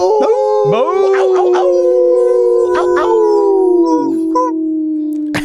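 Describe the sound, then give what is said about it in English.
Loud howling fills the whole stretch, several drawn-out voices overlapping and sliding up and down in pitch, with a few short yips breaking in near the start. “Get your howling ready.”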